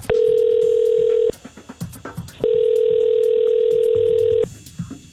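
A phone call to the human resources line of a large company in Mid-Mo rings out through the earpiece: two long, steady electronic tones separated by a short pause, clear and fairly loud, with faint background noise and no one speaking.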